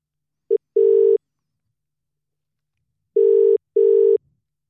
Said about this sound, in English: I'm going to get our good friend Giovanna on the phone. So let's give her a call right now.